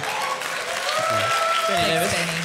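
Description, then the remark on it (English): An audience breaks into steady, dense applause, a continuous wash of clapping filling the room, with a few voices faintly audible over it. “No other room would that get a round of applause.”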